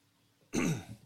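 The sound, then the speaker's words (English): A single rough cough bursts out after a short quiet stretch, then trails off into a low throaty rumble. No one speaks. “Yeah, I turned my mic off because I was coughing.”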